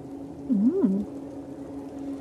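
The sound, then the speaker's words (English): Sliding stone doors grind hesitantly open, once a crystal panel is slid back into place, getting about halfway before stopping, with a low, wavering groan that dips and rises for about half a second, then fades into a steady low hum with no voices. “Sliding the panel back in, the doors sort of very hesitantly start to slide open, make it about halfway open, and then stop.”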